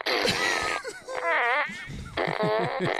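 A toy fart gun shaped like a ray gun fires a few electronic fart noises in quick succession, each a buzzy, wobbling blast with sliding pitch, loud, separated by short gaps.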